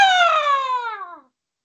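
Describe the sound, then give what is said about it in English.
A person vocally imitates an osprey's screech: one loud, strained cry that slides steadily downward in pitch for just over a second, then stops abruptly into silence. “Osprey with a half screech.”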